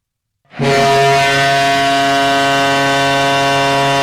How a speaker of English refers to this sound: And the buzzer has sounded. The Tampa Bay Lightning are the 2019 Lord Stanley Cup champions.